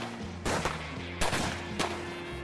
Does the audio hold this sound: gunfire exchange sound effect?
yes